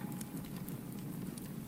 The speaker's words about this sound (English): You stare into the flames and watch them flick and dance and then disappear, only to be replaced by the next. Deep in the belly of the fire, you see the wood splintering and crackling.